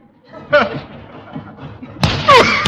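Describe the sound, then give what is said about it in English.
A body runs into a padded tackling sack after a running start, slamming into it with a hard, heavy thud, followed by a grunt of exertion. An earlier short vocal burst and faint shuffling precede the impact. “I'll get a good running start.”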